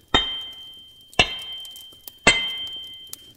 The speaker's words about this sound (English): I think 3 hammer strikes should suffice, if you would.